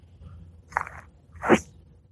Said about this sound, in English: Uh-uh, what are you doing? Was that slurping?